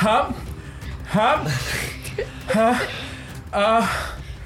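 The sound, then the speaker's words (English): A voice imitates the panicked heavy breathing of someone having a panic attack, about four loud, ragged bursts of gasping inhales and exhales, with no words spoken. “One, I am having a panic attack. You think you're talking? Okay, you're now, just breathing.”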